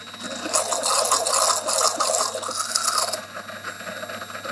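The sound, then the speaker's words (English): A container of oil mixed with smoked roe is shaken hard to re-emulsify the oil, giving a rapid, rhythmic sloshing rattle that runs steadily for a few seconds before easing off. No one speaks. “I'm going to re-emulsify the oil back in. Give it a shake.”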